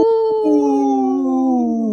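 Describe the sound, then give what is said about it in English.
A loud, sustained wolf howl held on one long note that slowly slides downward in pitch, heard alone with no talking. “Howl!”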